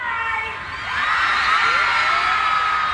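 A large concert crowd, wet after standing for hours, cheers and screams continuously, with high-pitched shrieks swelling louder after the first second and holding at a loud, sustained roar throughout.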